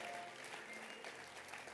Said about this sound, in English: Clap your hands and let's appreciate the blessings of God.